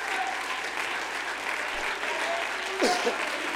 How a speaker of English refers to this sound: Would you give the Lord a great big hand clap of praise before you see it?